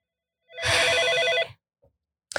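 A single loud burst of a telephone ringing, a bright trilling electronic ring lasting about a second, followed by near silence with a faint click at the end.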